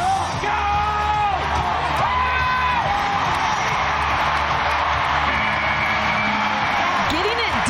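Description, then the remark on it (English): A loud, dense arena crowd roars continuously after a bull ride, with individual yells and whoops rising above the steady wash of cheering throughout. “you're seeing some cheer.”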